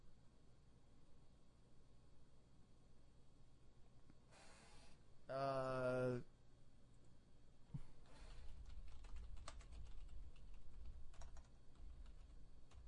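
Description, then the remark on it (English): Soft, irregular clacking of keys on a computer keyboard, fairly faint against a low background hiss, with a brief buzzy tonal burst partway through and no talking. “Oh, they're typing it.”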